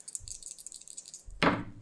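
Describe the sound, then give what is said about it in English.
Dice being rolled on a table rattle and clatter briefly, a scatter of light clicks followed by a louder tumble near the end, fairly quiet with no talking. “I rolled the wrong dice.”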